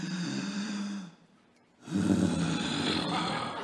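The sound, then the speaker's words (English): A voice imitates a 30-something-year-old man's sniffling: two long, harsh nasal snorts with a low rumbling tone, separated by a brief quiet pause, fairly loud and with no talking. “He'd sit there and sniffle, like this 30-something-year-old guy who was like a sniper in the SAS, according to his stories.”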